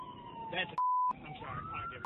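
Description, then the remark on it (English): A moving ambulance's own siren, recorded by its onboard camera system, wails steadily in the background, its pitch sliding up and down beneath a muffled, noisy scene, briefly cut by a flat electronic beep tone partway through. “The ambulance had its sirens on.”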